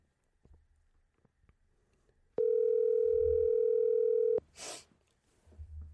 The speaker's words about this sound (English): That's why we're doing these phone calls today. I'll call random numbers in my phone right now.